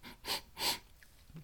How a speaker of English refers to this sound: Okay, so I've already tasted it last night, but we're going to do our little tasting anyway here in the skull goblet that I found in the abandoned castle upstairs. So we're going to have a sniff.